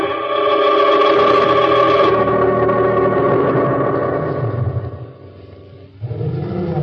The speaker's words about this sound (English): Well, everything looked peaceful enough, but there was an undercurrent of excitement about. Somewhere in the distance, a lion roared.